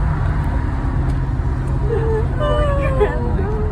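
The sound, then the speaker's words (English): Steady, loud low engine rumble inside a moving bus on the way to a band event, with indistinct chatter and a few brief high squeaks rising near the end. “We are casually on a bus.”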